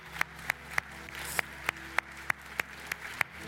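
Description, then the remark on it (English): An audience at a morning church service claps together to thank God, in a steady, even rhythm, roughly three sharp claps per second, over a low continuous hum with no voices. “Can we just clap and thank the Lord for what he's doing this morning in the lives of people?”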